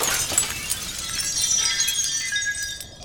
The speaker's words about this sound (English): And despite being several sizes larger than this mirror, with a mere step, his entire body is on the other side of it. And as soon as that happens, all of the mirrors shatter.